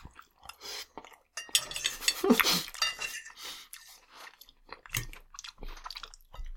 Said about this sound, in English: I just tried to soup slurp an entire piece of chicken. That's how you choke.